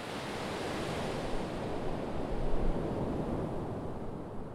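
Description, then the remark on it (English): Steady roar of Pacific Ocean surf breaking beside the border wall that runs 300 feet into the ocean at Tijuana, Mexico, a continuous wash of noise that swells slightly midway, with some wind buffeting the microphone. No one speaks. “I'm standing next to the border wall that ends 300 feet into the Pacific Ocean.”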